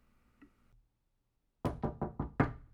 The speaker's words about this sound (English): But before she had an opportunity to catch her breath, she received a knock at her door.